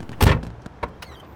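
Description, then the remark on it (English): A car door unlocks and swings open: a heavy thunk followed by a few sharp mechanical clicks, fairly loud, with no voices. “Unlock the door!”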